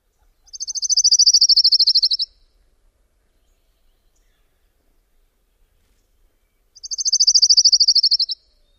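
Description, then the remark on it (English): An orange-crowned warbler sings twice, each song a high, rapid, buzzy two-part trill lasting under two seconds, separated by a long silent pause. Clear, with no background noise. “The orange-crowned warbler that I talked about in the trilling episode also has two parts.”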